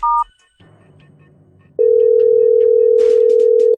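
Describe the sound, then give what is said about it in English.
A brief electronic keypad beep as the last number is pushed on a phone, a short quiet pause, then a loud, steady telephone tone that holds unbroken to the end as the call from the Cosmo and Kat morning show on Y107 connects, with a faint crackle partway through. “I've got one more number to push on this phone number.”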